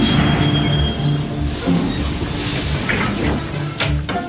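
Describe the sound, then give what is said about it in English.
A train brakes with loud, high-pitched wheel squeals screeching over a steady low rumble of rolling cars, the metallic whine rising and wavering throughout. “Stop this train!”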